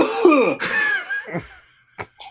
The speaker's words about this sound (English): That's bad timing. Your cough is so violent. Is that how you normally cough?